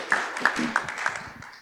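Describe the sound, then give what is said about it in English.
A small audience breaks into light, scattered clapping, a handful of sharper claps standing out over a soft, steady patter that fades slightly toward the end. “So I reckon that might be worth a clap.”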